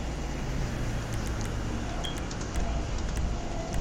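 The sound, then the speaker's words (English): A Corvette sports car drives in a video game, its engine and road noise forming a steady, dense rumble with faint high ticks scattered throughout, and no one talking. “Oh, so I'm in the Corvette, so I'm sorry if I'm driving like an idiot.”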